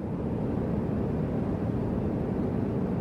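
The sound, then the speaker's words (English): A steady, low roar of airplane cabin noise, a dense rumbling hum that holds constant and fills the space with no voices or breaks. “Definitely my go-to sound is the airplane.”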